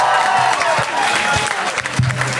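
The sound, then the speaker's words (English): A large audience claps steadily and loudly for the 100 Voice Choir, a dense wash of hands with faint cheers and voices mixed in underneath. “Give yourselves that a round of applause.”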